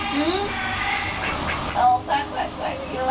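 A duck quacks several times in a quick series of short, nasal bursts, moderately loud, over a steady background hiss.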